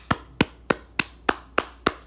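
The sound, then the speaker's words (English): Seven sharp hand claps in a steady, even rhythm, crisp, each one snapping out and dying away quickly, with no voices around them. “First off, let's clap it up.”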